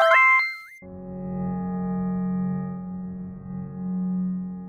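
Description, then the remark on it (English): A phone is dialed to call guests in the UK: a rapid burst of electronic dialing beeps jumps between pitches, then gives way to a steady, buzzing harmonic hum that drones for several seconds with no voices. “So let me use the old space phone here. I'll dial it up.”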